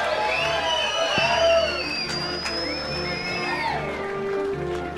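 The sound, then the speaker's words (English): A crowd at a live show at Cooly applauds and cheers steadily for several seconds at the end of the night, with high whoops and whistle-like shouts rising over a dense wash of clapping. “Big round of applause”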